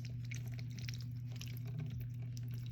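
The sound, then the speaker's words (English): Newly hatched ducklings nibble at and almost gargle their drinking water, slurping in a steady stream of small wet clicks and sloshes, fairly quiet, over a constant low hum, with no one talking. “They nibble at it and make the funniest slurping noises.”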